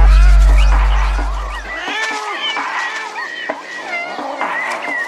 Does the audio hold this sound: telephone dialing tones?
no